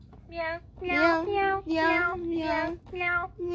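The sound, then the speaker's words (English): A person imitates a cat, letting out about five drawn-out, whiny meows in quick succession, loud, with only brief pauses between them. “Are you freaked out by the meows?”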